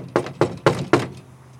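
Four firm knocks on a door in a steady, evenly spaced rhythm, fairly close and clear, followed by a quiet pause with only faint room hum.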